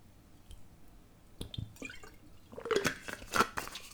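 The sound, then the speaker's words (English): Water sounds as a drink of water is fetched: a few soft clicks and drips, then a louder, bubbling splash of water being poured near the end. No one speaks. “If you just bear with me 1 second, I'm just gonna get some water.”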